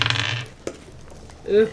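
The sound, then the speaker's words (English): Dice clatter and rattle briefly across a hard tabletop, rolled during a tabletop game to check whether a character stays put, followed by a single sharp tap as they settle, then a short voice near the end. “Do you want to roll to stay put? Yeah. Okay, go for it.”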